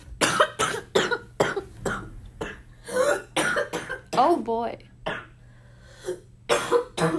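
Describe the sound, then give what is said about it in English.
A harsh, chesty bronchitis coughing fit: a long run of rapid, rough coughs in uneven bursts, loud and raspy, with a brief spoken exclamation and a wheezy breath partway through. “We love bronchitis. Breathing is fun, except when you can't.”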